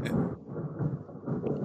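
A loud, low stomach growl from someone who has not eaten yet today rumbles continuously for a couple of seconds, a deep gurgling drone that swells and dips slightly, with no talking over it.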